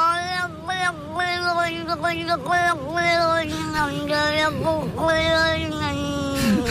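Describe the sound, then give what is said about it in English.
A cat from Cork yowls almost nonstop in long, wavering, speech-like cries, its pitch sliding up and down and dipping sharply, loud with no other voices. “People are claiming that cat sounds like someone from Cork.”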